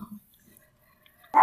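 A single sharp, loud dog bark bursts out at the very end after a second of near silence, with only a faint low rustle at the start.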